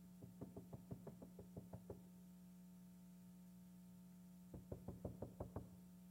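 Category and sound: impact, knocking on a door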